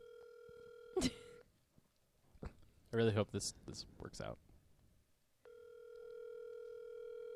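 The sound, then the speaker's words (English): A phone's ringback tone purrs through a speakerphone at 10:20 at night, two long steady rings with a brief voice speaking between them while the call waits to connect. “Can you call her and put her on the line right now? No, let's put her on speaker.”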